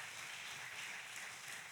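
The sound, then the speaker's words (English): An audience at a bilingual Spanish and English church service applauds the Lord, many hands clapping together in a dense, steady wash of sound that holds evenly for a couple of seconds with no voices over it. “Give the Lord a great round of applause.”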